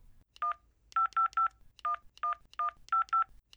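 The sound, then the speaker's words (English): A rapid series of touch-tone beeps as a long European phone number is keyed in, about a dozen short dual-tone presses in uneven groups, clear with no talking. “I know it's long. He's Irish. It's one of those wonky European phone numbers.”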